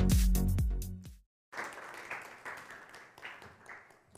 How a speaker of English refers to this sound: All the applause is for the veterans, so thank you. Yes, again, thank you for your service.